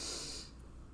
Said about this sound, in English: … about to go do some deep breathing exercises right now.